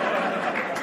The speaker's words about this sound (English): I once heard, why are you clapping? Okay, whatever.